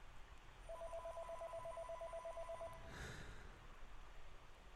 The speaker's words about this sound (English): A hand reaches for the ringing telephone, bringing the receiver up to the face of Casey